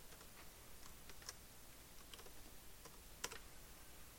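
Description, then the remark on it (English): Soft, irregular clicks of typing a password on a computer keyboard, a scattered run of keystrokes with one slightly sharper tap near the end, fairly quiet with no talking. “It's a very nice keyboard.”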